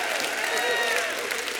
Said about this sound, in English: Give him a hand clap and a shout of triumph in the house.